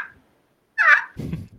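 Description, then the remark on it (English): A short, sharp cluck, then a louder, raspy yelp made on a handheld slate call imitating a turkey. Both are fairly loud, with no talking. “It's just a, I got a little cluck going on. Cluck a yelp.”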